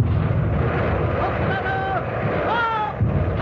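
Heavy naval gunfire from the warship Artemis firing salvos at the Italian flagship rumbles in a dense, continuous roar of deep booms, with thin whistling tones rising and falling over the din and a fresh thump near the end.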